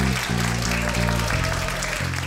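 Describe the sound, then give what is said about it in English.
A crowd claps continuously as a band's song ends, a dense, steady wash of applause that stays loud throughout, with sustained low musical tones shifting pitch beneath it. “When it ends, everyone claps.”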